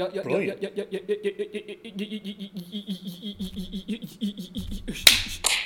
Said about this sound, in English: Sorry, I just like to clap. He does like to clap.